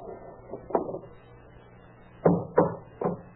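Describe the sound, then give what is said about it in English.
A hammer knocks at a door's hinges to take the door off them, in a few sharp, irregular blows, some in quick pairs, muffled, with no talking. “Hey, what are you trying to do to that door? Take it off the hinges.”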